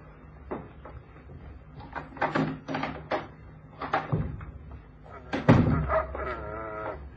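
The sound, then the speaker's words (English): A cupboard door is opened and then closed, with a few clattering knocks and a solid thump near the end, while faint voices murmur in the background. “Where can we go? In that cupboard.”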